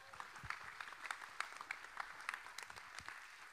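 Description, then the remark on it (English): An audience gives the Lord a clap and a shout, clapping steadily in a dense, crackling patter, with a few louder claps standing out and faint voices calling out beneath the applause. “Give the Lord a clap and a shout in here.”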